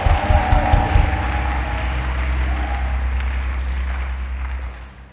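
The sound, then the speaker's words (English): A crowd claps steadily for several seconds, a dense wash of applause over a low droning hum, loudest at the start and fading out near the end. “Anybody clapping, you have received common sense.”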